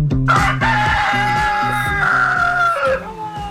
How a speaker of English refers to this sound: Good morning, everybody. It's our sick rooster. Still, got to take it to the vet. Still. Yep, still sick.